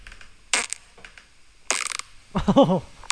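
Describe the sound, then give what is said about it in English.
A recorded fart: two short, harsh, breathy bursts, then a louder buzzing stretch that ends in a low, wavering growl rising and falling in pitch. No one talks over it. “Oh, that was a growler. That one growled at the so end.”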